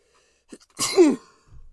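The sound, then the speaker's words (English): A single sharp sneeze bursts out after a quick intake of breath, followed by a brief low rustle; no talking. “Bless you, my child.”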